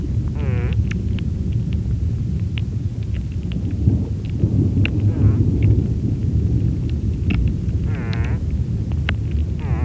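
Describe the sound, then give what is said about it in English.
Short nasal buzzing bursts from an unidentified underwater creature, picked up on a hydrophone recording, recur every few seconds over a steady, heavy low rumble of underwater noise, with scattered sharp clicks and ticks throughout. “one of my favorite recordings you made is a little mystery critter that your hydrophone picked up.”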